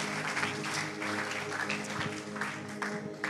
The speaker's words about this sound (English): But could we give just Jesus just a big hand and just saying thank You, God, for covenant friendships in our life. Amen.